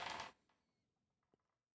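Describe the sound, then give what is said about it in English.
A brief, bright clatter of dice tumbling across a hard surface, rolled for a character's dexterity score in a role-playing game, followed by a couple of faint, scattered clicks as they settle. Fairly quiet, with no voices. “Almost lost that dice.”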